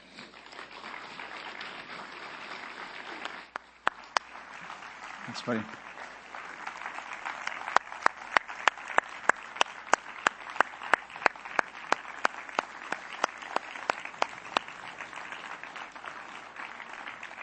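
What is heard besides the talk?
audience applause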